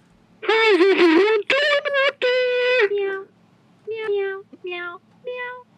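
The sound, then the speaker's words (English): A toy keyboard plays a quick run of electronic cat meows at shifting pitches, the first few loud and bunched together, the later ones shorter and softer with brief gaps. “That's the keyboard. Why? It falls asleep. It purrs and then falls asleep.”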